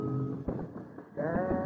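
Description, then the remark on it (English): A large flock of sheep bleating as a man drives them along a road near Boston, blocking it, many wavering, nasal cries overlapping into a continuous chorus, with a louder burst of bleats near the end and no speech. “Nearing Boston, a large flock of sheep driven by a red-faced man in shirt sleeves blocks the road.”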